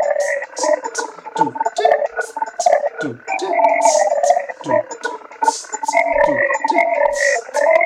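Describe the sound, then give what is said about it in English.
A Casio SK-1 sampling keyboard plays gritty, croaking electronic tones, with repeated downward swoops and bursts of hiss in an irregular, steady stream, loud and without any talking. “Yeah, it's a sampling keyboard. It's the SK-1. It's coveted by like noise musicians and stuff.”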